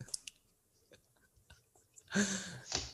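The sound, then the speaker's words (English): Someone chews chicken and shrimp right up against the microphone: soft, sparse wet clicks and smacks at first, then a louder, denser burst of mouth noise near the end. “Yeah, just chew really slowly and carefully.”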